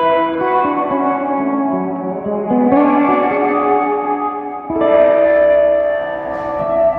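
An instrument rings out in sustained, layered chords drenched in a huge reverb, each new chord swelling in around one and three and five seconds over a long washy tail, loud and without any talking.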